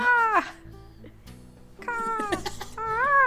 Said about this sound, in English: I can't hear you. There's too many seagulls.